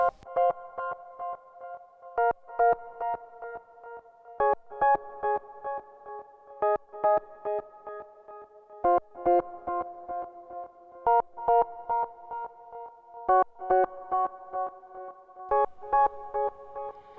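A keyboard part played on a Roland Juno synthesizer plays alone: rhythmic, pulsing chords in the mid register with sharp repeated attacks between sustained tones, steady and moderately loud throughout, with no voices.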